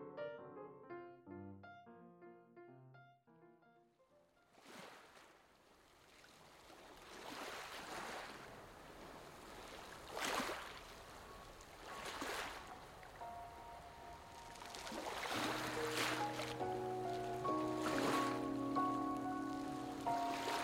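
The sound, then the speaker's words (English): Ocean waves wash in with repeated rushing surges every few seconds, full, after a brief musical intro; soft sustained music tones rise beneath the surf toward the end. “Being born on an island generates an involuntary and complex relationship with the sea. It's a captivating endless thing, the ocean.”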